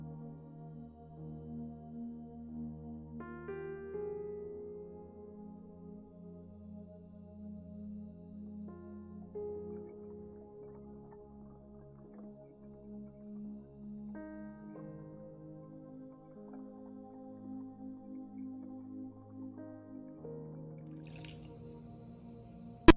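Water is poured into a blender jar that holds spinach, banana, frozen fruit and apple. It is a steady pour with rising tonal resonance as the jar fills, continuing for about twenty seconds and ending with a brief clatter.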